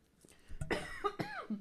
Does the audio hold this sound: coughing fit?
yes